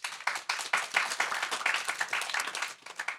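An audience breaks into steady applause as a show of applause answering a question from the stage, many hands clapping in a dense, crackling patter that holds for a few seconds before thinning out at the end.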